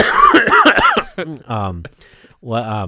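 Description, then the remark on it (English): A muffled cough held back in the throat, a quick cluster of choked bursts, followed by a few short voiced sounds like someone talking. “No, I was trying to stifle a cough.”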